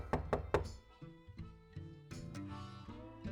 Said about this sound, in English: Say, you are woken to the sound of a light knocking on the main door room. Main room door.